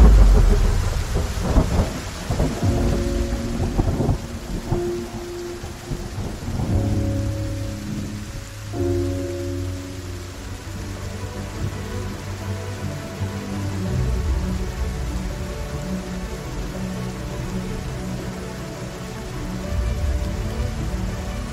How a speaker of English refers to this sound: I love the rain. I love the elements. I love the way it feels in my body, man. When I see people afraid of the rain, I say, boy, you're afraid of life.